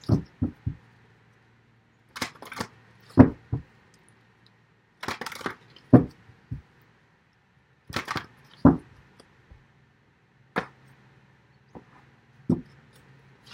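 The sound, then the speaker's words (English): Tarot cards are shuffled and handled, producing bursts of crisp riffling and soft slaps in irregular clusters with brief pauses between, no voices present. “Okay, well, first of all, I want to say, because right as I was shuffling, I was like, oh, there's a bunch of sevens.”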